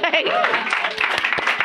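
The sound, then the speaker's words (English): An audience claps over a bed of crowd noise, with a voice at the start and several sharp, scattered hand claps standing out toward the end. “Are you clapping because I'm going on tour or because I'm getting paid?”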